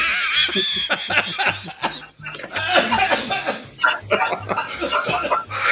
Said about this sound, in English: Oh, my hell. I just coughed up a lung. I was not expecting that.